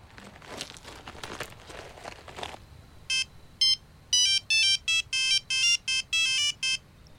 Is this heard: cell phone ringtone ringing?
yes